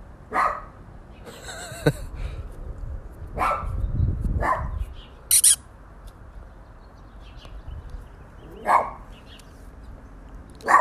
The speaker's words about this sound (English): A dog's barking at nothing.